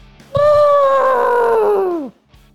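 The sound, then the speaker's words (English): A person's voice mimics an elephant call: one loud, sustained, strained tone held for nearly two seconds, with a steady pitch that sags and drops off at the end. “Like before we go, like an elephant call?”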